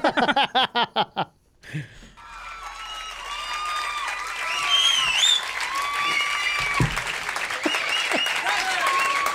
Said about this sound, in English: Opening applause and silence.